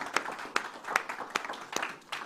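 An audience claps for Mother's Day in a steady, even rhythm, about six sharp claps spaced evenly apart over a soft wash of crowd noise, moderately loud.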